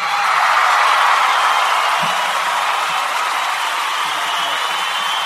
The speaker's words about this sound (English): That's a long cheer.